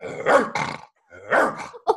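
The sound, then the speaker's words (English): A person imitates a big dog barking, giving two deep, gruff woofs separated by a brief pause, followed by a short sharp yip, loud with no other talk. “That's a really good bark. That's a big dog.”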